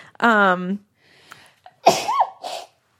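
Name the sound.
sneeze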